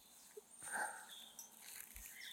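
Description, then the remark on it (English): Faint birdsong outdoors around 5:30 PM in warm weather near a rapeseed field, with several birds chirping and whistling. Their short, overlapping calls drift over a quiet, open-air background, and no one is talking. “But I can hear a lot of birds, as I'm sure you can too.”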